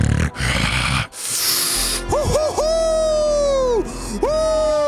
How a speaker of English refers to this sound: A table flips, and then you hear some tearing of clothes and growling and snarling.